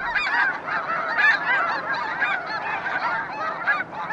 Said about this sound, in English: Mark has more to tell about the snow geese of the Bosque del Apache Reserve.